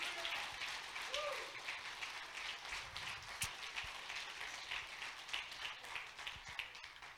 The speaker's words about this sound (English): Somebody clap your hands to the Lord and thank Him for His sacrifice.